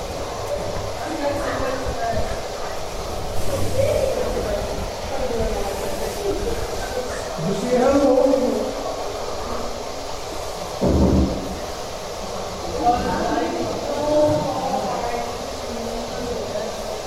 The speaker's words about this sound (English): With the noisy spirit box switched on, … continued to speak into the darkness.